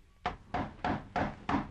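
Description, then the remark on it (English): Five soft, stealthy knocks on a wooden door long after midnight, evenly spaced in a steady rhythm, quiet, with no voices. “It was long after midnight when Corey was awakened by a stealthy knocking at his door.”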